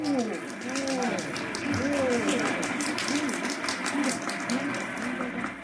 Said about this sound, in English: Yes, ladies and gentlemen, this is a happy, laughing crowd along Fifth Avenue today. A true reflection of the great sense of humor and good nature that makes America the place it is.